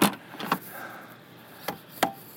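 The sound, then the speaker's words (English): A hand slaps newly fitted roof rack bars, ordered from Amazon Prime, on a two-wheel-drive vehicle's roof rails in about four sharp, flat smacks spaced unevenly, with quiet pauses between them and no talking. “That's me slapping them right there.”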